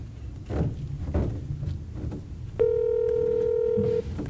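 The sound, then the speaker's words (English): A single steady electronic telephone dialing tone sounds for about a second and a half, clear, after a stretch of soft muffled knocks and handling noise. “God, I love how you figured out the phone system sound. We can call anyone.”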